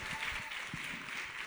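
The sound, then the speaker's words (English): An audience applauds everyone who has spoken tonight at the Laborastory event, a dense, steady wash of many hands clapping at a fairly even level throughout, with no voices standing out above it. “Can we just give a big round of applause to everyone that's spoken tonight and the Laborastory in general?”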